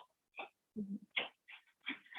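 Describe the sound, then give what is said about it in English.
An almost 11-month-old puppy named Pizza Party whimpers in a series of short, high, whiny cries, with a lower grunting or shuffling sound in between, as he is being sent to bed. No talking. “Oh, also, I have an almost 11-month-old puppy.”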